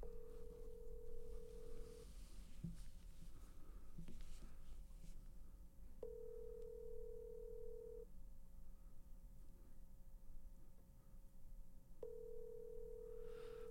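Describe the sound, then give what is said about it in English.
A phone call rings out unanswered: a steady ringback tone sounds in two-second bursts about every six seconds, three times, over a low background hum with no voices. “I mean, he would know the answer to this question, so let's hope this motherfucker answered the phone.”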